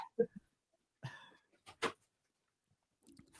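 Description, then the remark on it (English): A female pet dog barks a few times in short, irregular bursts. The barks are faint, with quiet gaps between them and no talking over them. “Damn, my dog's really barking.”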